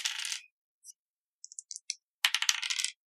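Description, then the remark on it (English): Three dice clatter across a table in a tabletop role-playing game roll, landing a 6 and two ones: a bright rattling burst, then a few scattered hard clicks as they tumble, ending in another dense, sharp rattle. No voices are heard. “Okay, so I am going to burn 2 lux because I rolled a 6 and 2 ones.”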